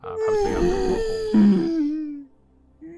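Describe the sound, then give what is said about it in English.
A person imitates the call of a disembodied whale with a long, wavering, moaning vocal tone that dips slightly in pitch and holds for about two seconds before trailing off into quiet. “That just sounds like a regular whale.”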